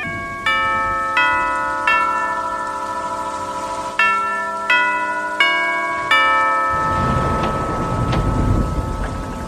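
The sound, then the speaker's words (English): A bell is struck about seven times in uneven clusters, each clear ringing tone overlapping the last and slowly fading, before a rushing, rain-like wash of noise swells underneath while it is raining. “I'm going to ring the bell right here.”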